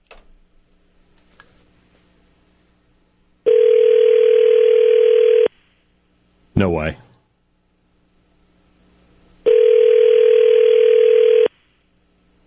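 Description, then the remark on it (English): Two long, loud telephone rings of a call patched through on the air, each about two seconds, separated by a pause in which a voice briefly speaks, with quiet background before the first ring. “All right, can we patch it through where we hear ringing and the whole deal? You should hear it now.”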